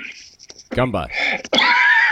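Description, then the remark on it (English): A loud coughing fit: several harsh, raspy bursts in quick succession, with a strained, throaty, voiced quality and no talking around them. “Just coughing my lungs out.”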